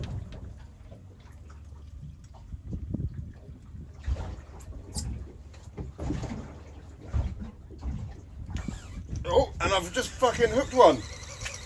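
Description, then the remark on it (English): A fishing reel screams in rising, buzzing bursts as line pays out to a fish, with the rod bent double, loud, over choppy boat and water noise on the Hans Deeps reef, with muffled vocal sounds and exclamations mixed in. “Screaming reel. Rod bent double.”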